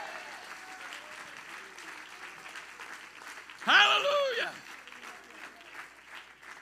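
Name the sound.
audience clapping hands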